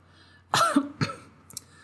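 A person coughs and clears their throat: a harsh burst followed by a second cough, then a brief raspy clearing, with no talking.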